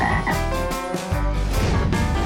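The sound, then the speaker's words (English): A frog croaks loudly, a run of deep, buzzy croaks repeating in quick succession with no voices present. “The Frog Prince?”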